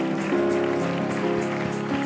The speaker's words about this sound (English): Could you clap your hands now to the Lord?